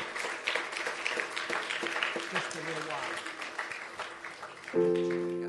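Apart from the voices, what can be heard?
audience hand clapping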